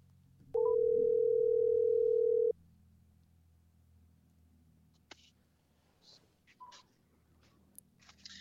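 A single loud ringback tone on an outgoing phone call to an interview guest on a Monday afternoon, one steady two-second burst, followed by near silence with a few faint clicks and soft rustles.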